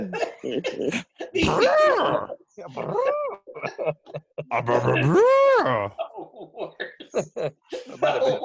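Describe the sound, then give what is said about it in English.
A turkey mouth call gives several loud, wavering squeals and yelps in short bursts, with chuckling and voices filling the gaps between blasts. “let me hear your mouth call.”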